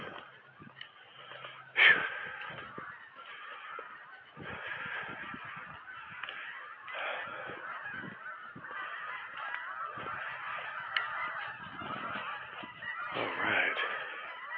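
A flock of geese honks continuously, a dense chorus of overlapping calls with a sharp louder honk near the start and another swell toward the end.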